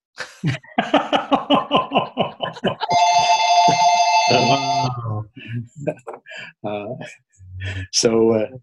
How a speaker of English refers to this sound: I'm trying to shut this phone off.